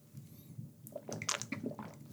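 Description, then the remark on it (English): Someone takes a sip of water, with soft wet slurping and swallowing sounds clustered into a couple of quick bursts. The sounds are quiet and no one is talking. “I'm going to pause and take a little sippy sip of water here.”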